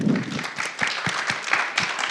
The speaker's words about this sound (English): Sorry, I keep talking over the clapping. It's terrible.